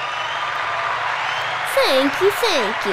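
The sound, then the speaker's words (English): A crowd applauds steadily, a dense wash of clapping throughout, with a few voices calling out over it toward the end. “I think the crowd even agrees.”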